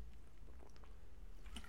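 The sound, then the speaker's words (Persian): Someone drinking water: a few soft, wet sips and swallows in brief bursts, fairly quiet over a low background hum, with no one speaking. “آب بخورم؟”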